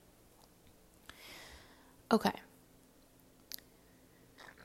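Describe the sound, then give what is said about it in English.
A quiet sip of tea, a soft airy slurp followed by a few small mouth clicks and swallowing sounds, with a brief spoken word in between. “I'm like afraid to talk too long, but I have a part two, so let me just take a sip of tea.”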